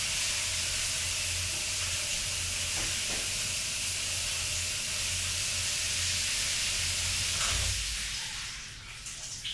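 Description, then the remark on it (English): Shower water sprays in a loud, steady hissing rush for about seven and a half seconds, then abruptly drops away to a fainter trickle. No one speaks. “from the shower part of it, sort of like, and just whoosh”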